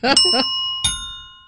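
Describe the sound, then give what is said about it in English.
A small bell rings out with a bright, sustained metallic tone, struck once more partway through and left to ring and slowly fade. A brief voice is heard at the start. “Well, and your bell could use my some bell work.”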